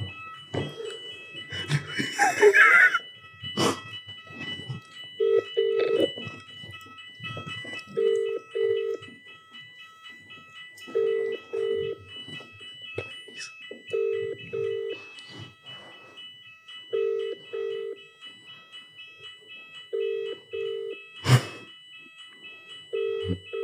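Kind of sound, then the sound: signal or alarm, phone call ringing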